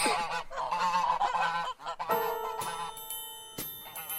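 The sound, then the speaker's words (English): Geese kept as watchdogs honk loudly in a rapid, overlapping burst of nasal, raspy calls for about two seconds. Then a few struck, bell-like tones ring out and hang in the air. “By watchdogs, if somebody's coming, they just make tons of noise.”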